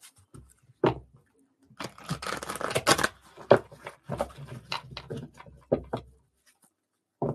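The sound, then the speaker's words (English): A deck of cards being shuffled a little away from the microphone: a long riffling burst in the middle, surrounded by sharp taps and softer sliding snaps as the deck is squared and cut. No one speaks. “And you guys can listen to me shuffle for a minute.”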